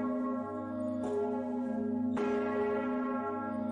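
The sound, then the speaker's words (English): Large bells of Amiens Cathedral in France ring with a deep, sustained hum, fresh strikes landing about a second apart over a lingering resonant drone, loud and full with no voices. “It's the Amiens Cathedral in France.”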